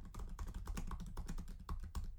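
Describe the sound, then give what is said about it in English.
Rapid, uneven clicks of typing on a computer keyboard, moderately loud, with keystrokes bunching into quick bursts and no voices. “Let me see if I can very awkwardly click away here on my keyboard and pull this up.”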